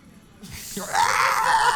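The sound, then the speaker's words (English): A loud, sustained high-pitched stock scream rises out of a rush of noise, like several voices shrieking together in a film scene, lasting to the end without any talking. “It's always the same screams.”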